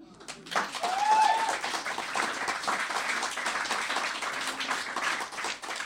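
An audience breaks into sustained applause, a dense crackle of many hands clapping that stays steady for several seconds, with a brief rising whistle near the start.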